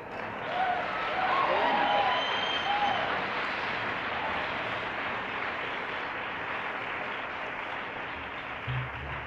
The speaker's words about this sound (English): And number one gentleman, he'll put you on a show. You applaud for him and he'll really turn on.